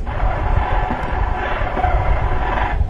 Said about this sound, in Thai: นี่เสียงมดงานนะ ใช่ เสียงเหมือนแมวเลย